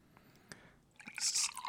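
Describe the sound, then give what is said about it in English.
A few soft clicks, then a brief burst of a cloudy, bubbly golden drink being poured into a glass, a fizzy splashing that swells and trails off after under a second. “My pour looks better than yours.”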